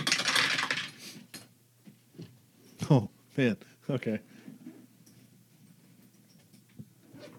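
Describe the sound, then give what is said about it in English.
A short clatter of dice, rolled for initiative in a tabletop game, tumbling across a hard table, followed by a couple of light clicks as they settle, then a brief spoken reaction. “I should use these dice more often.”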